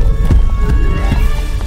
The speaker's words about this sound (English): He sat down on the ground to cry, but just then he heard the sound of thunder coming closer and closer and closer. It wasn't thunder, though. It was footsteps. The footsteps of three giants.